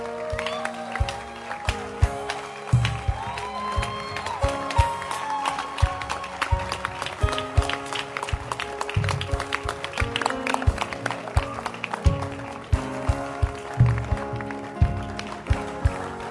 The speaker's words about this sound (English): Come on, why don't you clap your hands for the Lord? Wow, what a blessing. Come on, clap your hands properly.